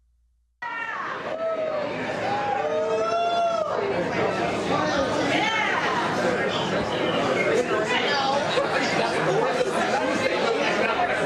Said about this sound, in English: So barely, just basic restaurant noise. Nobody too excited about that.